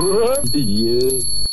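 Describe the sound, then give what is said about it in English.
A voice imitates a ringing bell in two sustained, wavering sung tones, the second dipping then holding steady, with a faint high electronic whine running throughout. “Every time a … bell rings”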